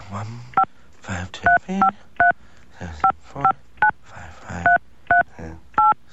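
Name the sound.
telephone keypad dialing tones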